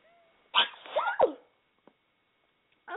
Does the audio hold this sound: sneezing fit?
yes